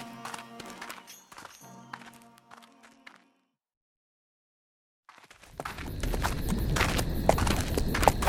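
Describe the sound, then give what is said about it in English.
A horse's hooves clip-clop in a quick, uneven rhythm, then stop; after a short silence a loud, rough rush of noise fills the rest. “That was a long climb to the top of the volcano. I'm glad I took my horse.”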